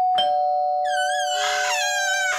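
household object, doorbell ringing

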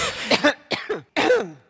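human body sound, cough

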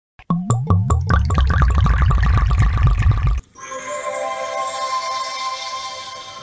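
household object, wine being poured out

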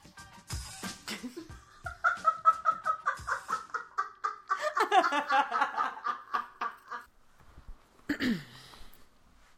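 bird, rooster crowing and clucking

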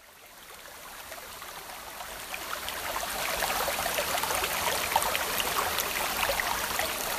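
nature, small waterfall

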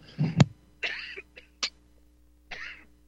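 human body sound, cough

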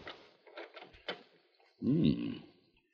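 household object, bedroom door opening

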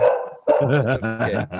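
animal, dogs barking

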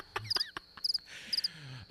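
insect, crickets chirping

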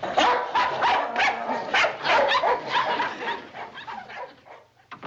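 animal, dogs barking

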